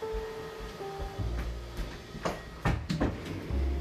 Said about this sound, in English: Can you go close the door so it doesn't come in?